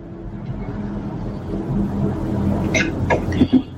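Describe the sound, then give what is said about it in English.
A loud truck rumbles by with a steady, deep engine roar that swells slightly, then a few short hissing and clattering bursts near the end. No one speaks. “I'm going to wait for that loud truck to go past.”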